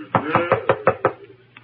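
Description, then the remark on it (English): Six quick, evenly spaced, firm knocks on a laboratory door, followed after a brief pause by one faint, softer tap. “And every time I knock, wait, and you shall see. Here's the door.”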